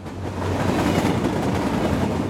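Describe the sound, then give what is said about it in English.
A fast eastbound train rushes past, a loud, steady rumbling roar filling the whole moment with no voices over it. “There's a big ass hill to get to a train that's heading down to the house, but this train going fast as fuck.”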